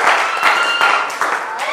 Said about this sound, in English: Come on, clap for Jesus. Clap for Jesus. Clap for Jesus. As you take your seat.